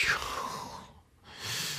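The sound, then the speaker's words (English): A voice imitates exaggerated, dramatic heavy breathing: a long, loud breathy exhale, a brief silent pause, then another forceful breath, with no words spoken. “They be breathing hard and stuff, trying to dramatize it.”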